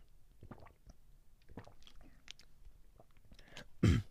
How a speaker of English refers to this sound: So, okay, so right, I'm gonna drink water. So if you hear it like kind of weird, it's because like I'm drinking water.